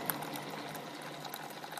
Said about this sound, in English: So we have a Keurig. It doesn't make great coffee, but it is super convenient. And also, it heats water really quickly for tea.